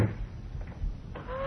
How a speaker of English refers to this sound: Close the door, Dr. Wan. Hurry.